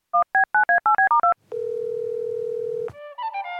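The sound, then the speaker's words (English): A telephone call to a friend is dialed: a quick series of seven short two-pitch keypad beeps, followed by a steady humming dial tone that holds for over a second before a brief rising electronic chime. “Let's call our friends,”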